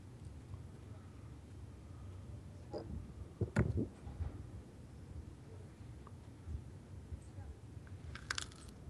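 Someone munches on food, with a short cluster of crisp crunching bites in the middle and a few faint crackly chews later, over a low, muffled background hum.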